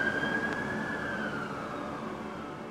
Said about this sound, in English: And just maybe 30, 40 seconds later, the cops just went whizzing by with their sirens on.